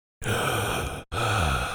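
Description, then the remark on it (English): A person imitates the heavy breathing of someone secretly watching Laura: two loud, raspy breaths in quick succession, each close to a second long, with a brief pause between them and no talking. “And they're breathing very heavily.”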